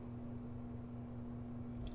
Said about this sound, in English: take a sip of my coffee and leave you in suspense.